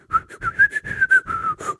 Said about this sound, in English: the way you whistle it, it's a whole new song. It's 5 minutes longer because you can't whistle very quickly.